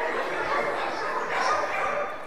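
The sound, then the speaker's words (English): A crowd of voices yaps and barks together in imitation of medium-sized dogs, a dense, overlapping chorus that stays loud and steady for a couple of seconds. “We have middle-sized dogs that bark, you know.”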